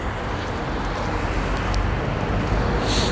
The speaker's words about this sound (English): I've just gone outside now. There's some traffic and it's a little windy.